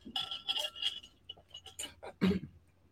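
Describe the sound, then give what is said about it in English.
Light clinks and knocks of glassware as someone gets water, with a few short ringing taps followed by duller handling sounds and a soft thud, all fairly quiet and with no talking. “Sorry, let me get some water.”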